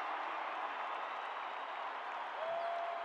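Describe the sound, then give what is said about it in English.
A dense, steady roar of basketball arena crowd noise with applause and cheering, the crowd on their feet after Bogdanovich's corner three tied the game at 111 with 2:10 to play, loud and sustained without a break, and a faint whistle-like tone near the end. “Crowd on their feet.”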